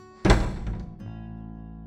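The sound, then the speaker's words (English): A bedroom door slams shut with a loud, sharp bang that booms briefly before fading, followed by a softer rattle or thud as it settles, as someone runs into the bedroom and slams it. No one speaks. “And runs into the bedroom and slams the door.”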